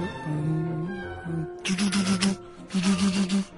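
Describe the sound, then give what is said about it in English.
A voice imitates a car struggling to start on a very cold wintry morning: a low, strained groan, then two raspy bursts of rhythmic, sputtering cranking that never quite catch. “All right, someone trying to start their car on a wintry morning.”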